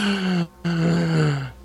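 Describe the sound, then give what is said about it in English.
A drawn-out, dramatic vocal gasp, voiced, split by a brief pause into two long parts, each sliding downward in pitch like a theatrical moan. “I loved the extended gasp.”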